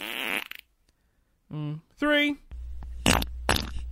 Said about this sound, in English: Yeah, fart number two.